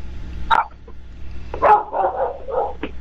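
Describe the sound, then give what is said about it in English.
Dogs barking: a lone bark, then a quick flurry of several barks and a final short yelp, moderately loud over a low background hum. “Hopefully your dogs aren't barking at the FBI.”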